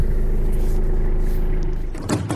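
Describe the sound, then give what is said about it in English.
A car drives along a sand road after heavy rain, reaching the first river where the water has washed out the sand road and left a concrete pipe adrift, with a steady, heavy low rumble of engine and tyres, ending in a short clunk and rattle as the noise shifts. “Okay, we're on the road here, and we've just come to the first river, and the water has washed out the sand road and left the concrete pipe adrift.”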